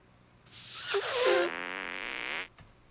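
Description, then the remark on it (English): A loud video game fart sound effect as a character in a martial arts outfit tries to fart on an opponent and misses: one long, sputtering, hissy blast lasting about two seconds, wobbling briefly in pitch before trailing off. No one speaks. “You call that farting on someone? You missed by a mile.”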